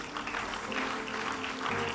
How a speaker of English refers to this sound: Close your eyes and lift up your right hand. You can clap.